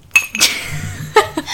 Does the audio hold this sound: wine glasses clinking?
yes